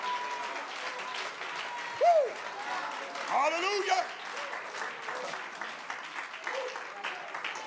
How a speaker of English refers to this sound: You ought to clap your hands. Don't wait for the answer to come. You ought to shout hallelujah. Clap your hands unto the Lord and magnify.